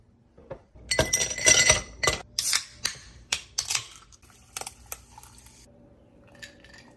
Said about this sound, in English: So I am going to put some ice in a glass, cool it off that way.